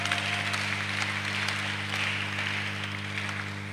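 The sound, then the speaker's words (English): An audience claps together in a steady, dense patter of many hands, sustained at an even level throughout with no voices, over a faint low electrical hum. “Oh, then let's clap for them properly.”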